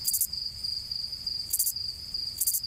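A Texas field cricket chirps a sequence: three short, bright bursts spaced irregularly over a continuous high-pitched ringing tone, with no voices.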